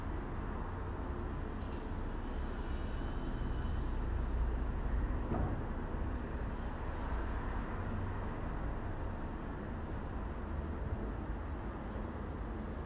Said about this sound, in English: Cars, construction, possibly an airplane or a helicopter. There's just something comforting about that.